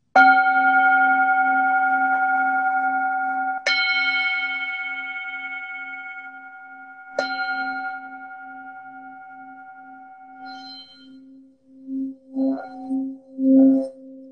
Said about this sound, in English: Three tolls of the bell.